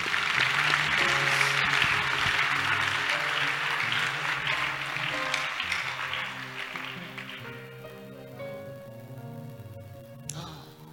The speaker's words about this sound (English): Your clapping is weak.